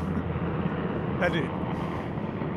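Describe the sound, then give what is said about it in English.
Two helicopters drone overhead in a continuous, fairly loud low rumble that fills the whole stretch without letting up, with a faint muffled voice buried underneath. “Those are two very ill-timed helicopters.”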